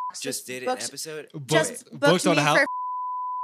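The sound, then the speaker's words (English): A steady, mid-pitched censor bleep tone sounds for almost a second right after a stretch of animated talking, with a tiny blip of the same tone just before the voice begins. “Wow, this is all just gonna be like beep.”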